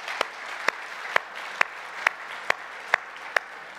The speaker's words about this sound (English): When you get to know the hearts of our worship team, you know that they're not in it for this, but could we just give a round of applause for a wonderful set of worship this morning?